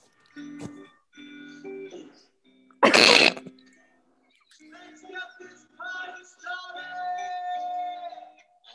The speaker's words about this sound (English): Play Mr. Farts. Now playing Mr. Farts. Party farts.